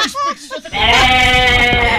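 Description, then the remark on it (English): A brief snatch of voice gives way to a loud goat bleat, a single sustained wavering cry lasting over a second. “I need the sound effect of a goat”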